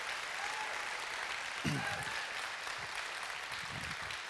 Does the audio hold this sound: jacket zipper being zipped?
no